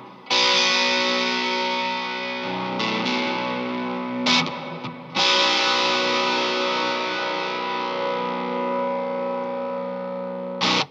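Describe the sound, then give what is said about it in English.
A heavily overdriven baritone guitar rings out in loud, sustained chords drenched in reverb, with a couple of brief breaks between strums and no voices over it. “with that reverb and the kind of gnarly overdrive you've got going on there,”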